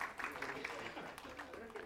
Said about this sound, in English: Okay, let's clap for them because they were the brave volunteers.